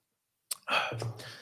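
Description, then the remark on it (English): A brief sip of coffee: a small lip click, then a breathy, airy slurp lasting under a second, with a low murmured hum toward the end. “And excuse that little coffee sip there.”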